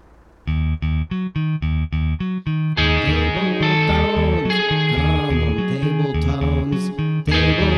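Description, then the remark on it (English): A short lo-fi theme tune recorded on a tape with old recording equipment found in a van: choppy, evenly pulsed chords open it, then a wobbly, warbling melody rides over sustained distorted chords, loud with no voices. “So check out this new theme song I made about 20 minutes ago on a tape and some old recording equipment I found in the van.”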